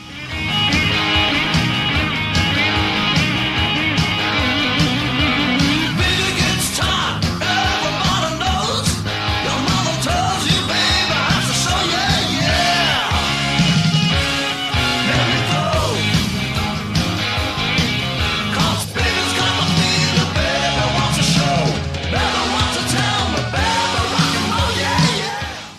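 A loud, driving rock and roll song plays throughout, full band with distorted guitars and pounding drums, topped by raw, shouted vocals and a wild scream at the beginning.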